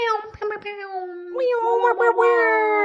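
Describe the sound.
A person imitates a cat's meow out loud as a sound effect, a drawn-out, nasal voiced cry that bends in pitch, then repeats in a brighter, wavering second meow, clear with no other sounds.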